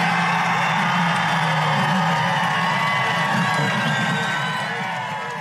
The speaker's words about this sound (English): And, of course, the crowd is cheering and cheering and going on, and that goes on for a little bit.